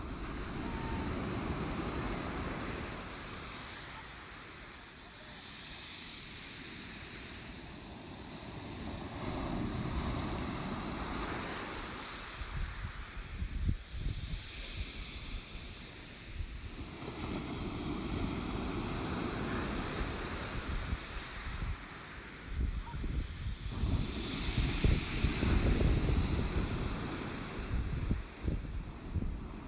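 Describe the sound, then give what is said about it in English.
Sea waves roll in and crash onto a pebble beach in Devon in repeated surges, each break followed by a hissing wash and rattle of stones, loud with steady wind behind. “So now it's that time to take a short moment to relax and listen to one of my favourite sounds, which is the sea crashing onto a pebble beach in Devon.”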